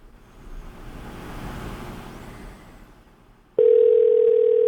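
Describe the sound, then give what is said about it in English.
A low rumble of traffic-like background noise, then a loud, steady telephone ringback tone of an outgoing call suddenly starts and holds through the last second, a single unbroken hum with no talking. “Is it ringing?”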